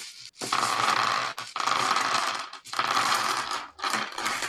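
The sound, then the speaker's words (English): Dice are dumped out, clattering and rattling in four dense waves, each burst about a second long with brief gaps between, loud, no voices. “Wow, that one like came in waves. Boy, yeah. It's still not over.”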